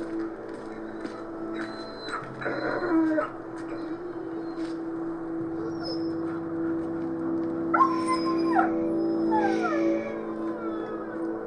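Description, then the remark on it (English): An injured dog whimpers and lets out several drawn-out, wavering howls, its high cries rising and falling in pitch, over a steady low rumbling drone. “It's the Whartons, dog. It's not gonna make it.”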